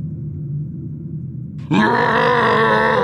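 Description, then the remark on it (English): A creature, the Cyber Squatch, gives a low, rumbling growl that turns into a sudden, loud, sustained scream, a harsh, roaring shriek of frustration that holds steady to the end. “We cut to the inside of Angela Atticus Jr.'s 2020 Range Rover, screeching away down the highway as the Cyber Squatch screams in frustration.”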